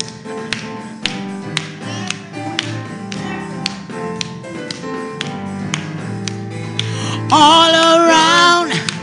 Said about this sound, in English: Come on, let's clap our hands this morning.